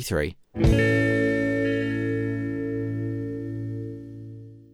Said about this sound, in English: In the decay in the remix, there's a stray note in the left channel which is absent in the 1987. So let's hear that. First in the 87, where, you know, it's not there.